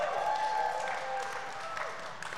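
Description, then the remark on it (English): A church audience applauds and cheers for a member who had surgery this week, steady dense clapping with a few voices whooping over it, holding at an even, fairly loud level throughout the short burst. “we know that you went through a surgery this week, and we are cheering for you, aren't we, church family?”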